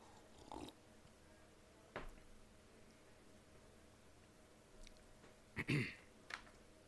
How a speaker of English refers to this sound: Well then, ladies and gentlemen, join me and let's lift up our cups and have our first slurp of the day. Here we go.